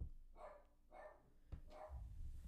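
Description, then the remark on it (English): A dog barks three times at an even pace, the barks sounding somewhat muffled, with a low rumbling background and no talking. “Gosh, this dog sometimes.”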